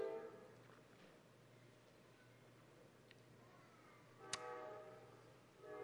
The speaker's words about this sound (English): Every time I'm going to make a final statement, that train's going to blow. I'm going to let it finish because we're not going to miss these last three statements.